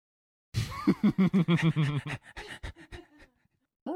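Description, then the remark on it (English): A dog pants in a studio in a quick, steady burst of about a dozen breaths, then slows to a few softer huffs before a short pause and a final brief sound. “You need to shut the door when you leave the dog in here.”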